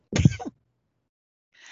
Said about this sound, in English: I was like, am I going to sneeze? And I thought I could make it through. I was wrong.